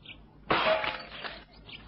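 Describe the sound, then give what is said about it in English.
A sudden crash of window glass shattering as a studio window is smashed to break in, with a loud bright burst followed by tinkling shards falling and settling over about a second, no voices. “I think it better to break in through these windows.”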